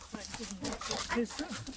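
A dog lets out a few short, sharp barks in quick succession, mixed with some rough yelping and background noise.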